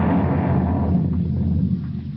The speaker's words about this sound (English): The prisoner has escaped. Fire the alarm cannon.